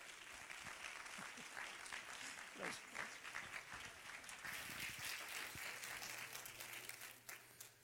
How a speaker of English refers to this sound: So if you wouldn't mind, clap your hands tonight as Pastor comes.